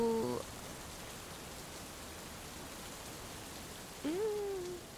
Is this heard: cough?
no